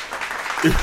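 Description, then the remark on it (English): A short burst of dense, steady clapping from a small group, fairly loud throughout, with a brief voice sound cutting in near the end. “Okay, give her some claps.”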